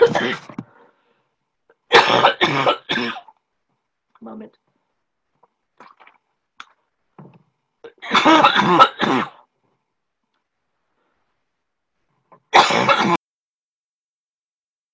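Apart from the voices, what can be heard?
coughing and throat clearing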